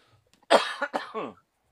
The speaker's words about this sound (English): Holy Christ, I keep coughing up that goddamn insulation. I'm sorry. Nah, dude, it has been a struggle to not cough. So if we have any fans out there, I apologize.